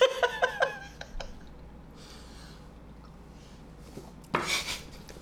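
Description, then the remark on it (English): Glasses clink together in a toast, four or five bright, ringing taps in quick succession, followed by a quiet pause and a short breathy gasp or exhale near the end. “Cheers to that.”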